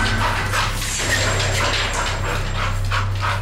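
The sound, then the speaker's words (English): A dog growls steadily in the corner of a backyard in the morning, a low rumbling sound broken by rough, repeated bursts like short barks over about three seconds, with no one speaking. “And it runs out when I open that door, and it goes to that corner and just goes nuts, like growling, kind of barking a little bit.”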